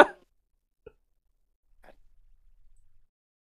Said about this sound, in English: All right, 1 second. I need to blow my nose.